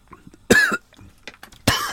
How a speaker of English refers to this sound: Oh, I'm coughing.